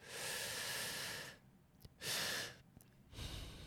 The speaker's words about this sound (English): if you're nervous about something, you basically do one big inhale, like to your max, whatever, and then breathe a little bit more in, and then just release it through your nose, and it just soothes you out.